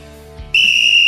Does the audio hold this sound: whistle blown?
yes